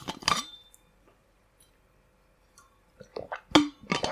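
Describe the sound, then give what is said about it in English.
Someone drinks water: a glass clinks at the start, a quiet pause follows, then a quick series of soft gulps and sips with no talking. “Wait, I need water.”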